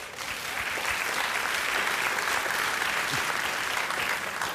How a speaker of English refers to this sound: Polite golf course applause.